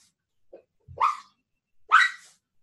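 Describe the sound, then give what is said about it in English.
A small terrier mutt dog named Scruffy, just woken from sleep, lets out two sharp, high barks about a second apart, with a faint whimper before them and the start of another yelp at the end, no one talking. “He's kind of a terrier mutt.”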